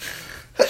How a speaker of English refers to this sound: Bless you. Bless you.